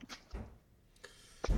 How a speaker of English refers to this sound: That's my cue right there. My little ones are banging at the door